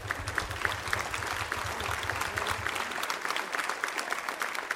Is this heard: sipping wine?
no